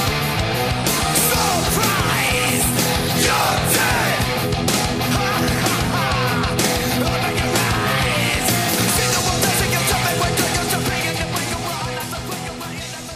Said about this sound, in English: Well, it's interesting because that's the one song on the album where he does kind of experiment a little bit more with the more angrier vocals and the kind of screaming.